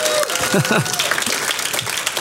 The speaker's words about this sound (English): You guys can clap more than that, huh